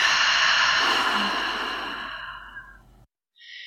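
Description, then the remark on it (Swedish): A single deep, slow breath, in through the nose and out through the mouth: a long airy exhale that gradually fades over about three seconds, then brief silence. No one speaks. “Och så tar vi några riktigt djupa andetag tillsammans. Andas in genom näsan och ut genom munnen.”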